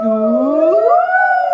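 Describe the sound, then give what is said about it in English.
A voice imitates a fire engine siren with one sustained, loud "woo" that glides steadily upward in pitch and holds at the top, voiced alone without other talk, as a singing-voice exercise. “Can we make fire engine sounds and use our arms?”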